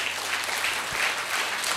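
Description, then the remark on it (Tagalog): An audience claps steadily in applause for the Lord, a dense, even wash of many hands applauding with no pauses and no voices standing out above it. “Palakpakan natin ang Panginoon.”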